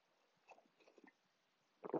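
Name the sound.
sipping coffee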